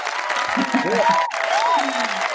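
Steady, dense applause fills the whole stretch at an even, fairly loud level, with a few brief rising and falling whoops from the crowd mixed in partway through.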